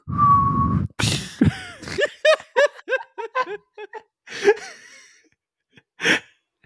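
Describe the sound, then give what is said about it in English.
A voice imitates an arrow flying past with a short, steady whistled tone, followed by a sharp breathy burst and then a run of quick, rhythmic giggling and snickering. “Is that your arrow sound? Yes. Do it again.”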